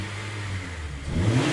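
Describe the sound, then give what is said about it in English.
A parked car's engine revs hard in Kansas, its low growl climbing in pitch toward the end of a short burst. It sounds fairly loud, with no voices. “And the car sounds really angry.”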